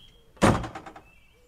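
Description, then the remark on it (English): A door opens with one sharp clunk and a short rattling slide that fades within half a second as someone steps out onto a street in Iwu. A faint steady hum sits underneath, with no one speaking. “Isham came to a door and stepped out onto a street in Iwu.”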